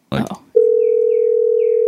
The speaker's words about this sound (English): Yeah, I only heard the ringing. Reason. If you played anything else, I didn't hear it. No, I didn't. I just played ringing.